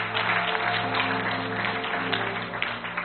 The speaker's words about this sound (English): I want you to clap your hands for God. This is working for you.